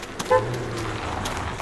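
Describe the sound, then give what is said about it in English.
A single short car horn toot sounds near the start over the low, steady rumble of the engine of an arriving car, with no voices. “That car!”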